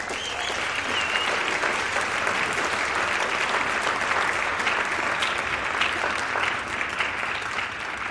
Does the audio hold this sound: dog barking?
no